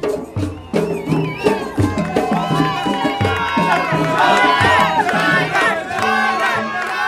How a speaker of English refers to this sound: Back with the ballad group in the street with no name, and the crowd are calling for a local man to play the Barrowing.